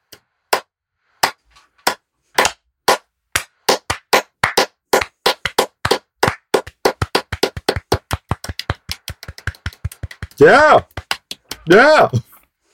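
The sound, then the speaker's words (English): A slow clap in the film Home Alone: single sharp claps at first, spaced about half a second apart, speeding up into a rapid run. Near the end, two loud rising-and-falling shouts like "yeah" cut through. “That's my favorite part of the slow clap is the guy who audibly goes, yeah.”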